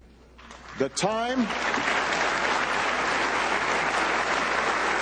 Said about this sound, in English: That's the applause at the UN for rejecting when he said that we can't have Israeli settlements. That's the applause at the UN.